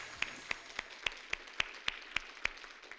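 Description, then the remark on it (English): A church audience gives a clap offering to the Lord. About nine sharp claps land together at an even, steady pace over a faint background hum, with no talking. “Let's go ahead and give the Lord a clap offering today, if you would, please.”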